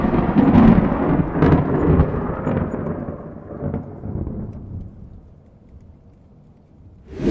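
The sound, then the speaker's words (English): A heavy rumble of thunder rolls in loud, slowly fading into a low murmur of storm noise before a sudden sharp crack bursts in at the very end. No one speaks. “She had a storm.”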